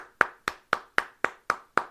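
Steady clapping in applause for a boy who aced his math assessment, seven sharp hand claps at an even, brisk rhythm, each crisp and bright with a quick decay, and no voices.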